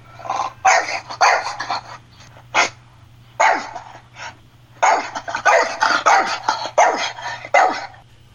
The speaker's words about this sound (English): Yes, the dogs are back. … dogs have been recovered. Yay! So I believe that was one or more of the French bulldogs barking there.